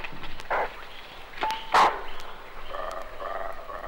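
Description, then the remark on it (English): Two bushbuck call to each other and another replies in a few sharp, hoarse barks, with one loud call near the middle and fainter answering barks around it, over a steady outdoor background murmur in the rainy season. “Here's two bushbuck calling to each other and another replying.”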